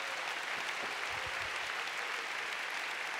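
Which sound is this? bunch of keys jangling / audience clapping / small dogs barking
audience clapping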